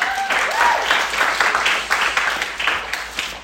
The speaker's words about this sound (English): Round of applause for that kid.